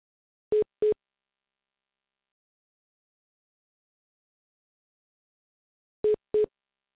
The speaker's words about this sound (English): I'm here and it's still beeping.